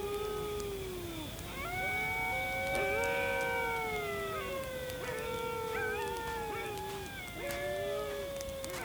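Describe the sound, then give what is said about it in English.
A pack of wild dingoes in Australia howls together from rocks in the moonlight, a few hundred metres from a campsite: several long wavering voices overlapping and sliding up and down in pitch, a steady, fairly loud chorus that carries on without a break. “From here, it looks like the shape of a big dog, but it is a dingo. And it looks like the whole pack is hanging out on those rocks.”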